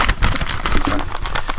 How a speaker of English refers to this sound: I love that you don't have a sound effect for that. Crinkle paper.